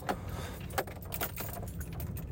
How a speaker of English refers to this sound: Sorry, my keys just like to dangle around like a son of a bitch.